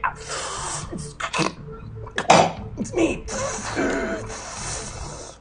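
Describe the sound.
Ragged, hissing breaths rasp through a mask in uneven bursts, with a few short spoken words mixed in between the harsh inhales and exhales, heard over a comm station hail from the ship Chandrilla Red.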